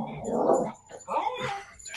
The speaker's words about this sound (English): Sorry, my cat's being really loud.